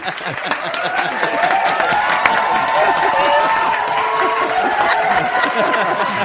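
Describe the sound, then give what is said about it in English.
A crowd applauds and cheers steadily to celebrate the announcement that Social Joey is sponsoring the Franchise Business Radio Show, dense clapping under a wash of whoops and raised voices that holds at a loud, even level throughout. “And woohoo! Applause.”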